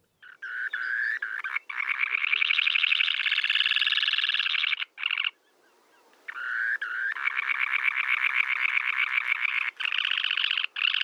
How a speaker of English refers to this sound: It's a semi-palmated sandpiper. Did I get that right? That's right.